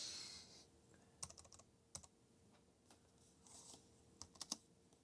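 Quiet clicking of keys on a computer keyboard, irregular bursts of several quick taps with short pauses between, fairly soft, with no voices.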